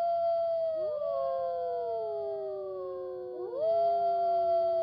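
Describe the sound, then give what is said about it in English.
A chorus of ten wolves in pursuit howls together, several long overlapping tones sliding up and down, fairly loud, with a brief dip before new voices rise again. “10 wolves are now in hot pursuit.”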